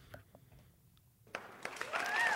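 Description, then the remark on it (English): A few scattered claps at first, then a small group breaks into brief, uneven clapping that grows denser and louder toward the end, with no talking, as award nominees for best film score are read out. “Guys, I know we can't clap for everyone.”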